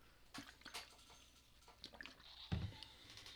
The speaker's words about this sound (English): I'm going to drink some more water because we're just that authentic.